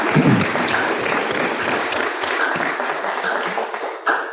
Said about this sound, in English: Give yourselves a round of applause for the mothers in the house.